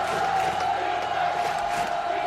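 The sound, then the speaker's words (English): A large crowd cheers wildly, a dense, sustained roar of many voices with scattered shouts and whoops, loud and steady throughout without any single voice standing out. “When underdogs become heroes, the crowd goes wild.”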